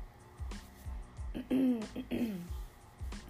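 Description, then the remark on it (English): Someone clears their throat several times in close succession in the morning, a rough, raspy hacking with short voiced grunts, fairly loud, with no talking. “Sorry, I'm always clearing my throat because I do this in the morning and my voice hasn't, like, you know, restored itself yet.”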